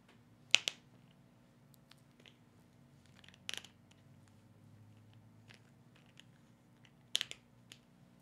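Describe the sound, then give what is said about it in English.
Someone struggles to twist open a bottle lid, making three short, sharp plastic cracks and clicks spaced a few seconds apart. They are distinct over a low background hum, with no talking. “Riveting podcast as I try to open a bottle.”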